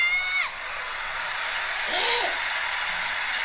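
In the last seconds of a State of Origin match, a high, shrill scream from Queensland fans behind the barricade rings out briefly and falls away over the steady roar of a large stadium crowd, followed by a fainter rising-and-falling shout deeper in the din.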